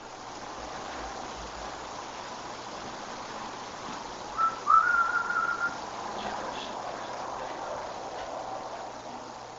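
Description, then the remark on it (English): A single short, faint whistle captured on an EVP recording, right at the recorder, slightly rising then holding steady for about a second, rises out of a constant hiss of background noise midway through an otherwise quiet recording. “This is Whistle.”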